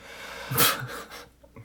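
A small, stifled nighttime sneeze: one quick breathy burst of air with a soft hiss, followed by faint breathing and near silence. No one speaks.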